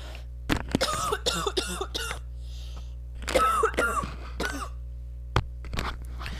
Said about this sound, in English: That's a dry cough. Is that COVID?